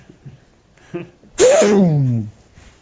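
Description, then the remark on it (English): A voice imitates an F-15 jet airplane with a loud, breathy whoosh that slides downward in pitch over about a second, preceded by a few soft, faint sounds. “F-15 jet airplane.”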